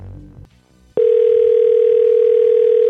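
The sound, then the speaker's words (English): A telephone ringing tone on an outgoing call: a loud, steady electronic tone starts abruptly after a brief quiet moment and holds unbroken to the end. “It's ringing.”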